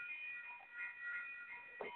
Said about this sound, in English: here we go. Here's the train.